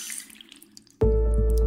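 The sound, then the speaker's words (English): A faucet is turned on about halfway through, and quiet trickling gives way to a loud, steady gush of running tap water close by that keeps pouring to the end. “By some estimates, up to 200 million people in the U.S. could be receiving tap water tainted with at least low levels of PFAS.”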